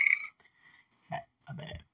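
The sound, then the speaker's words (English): A croaky burp breaks out in two short guttural bursts, the second longer and rougher, after a brief higher-pitched vocal sound at the start. “He ain't burp, y'all.”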